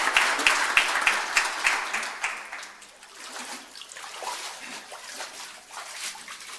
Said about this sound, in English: Now, let's applaud for Brennan.